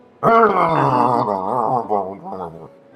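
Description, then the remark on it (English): A crowd of voices at a court lets out a loud, sustained groan of disapproval, a low wavering moan that swells and dips for over two seconds before cutting off. “The crowd does not seem to like that idea at all.”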